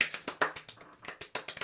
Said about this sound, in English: Applause! Give it up for her.